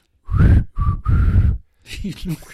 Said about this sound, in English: I can't really whistle.